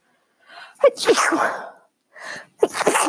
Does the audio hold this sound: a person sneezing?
yes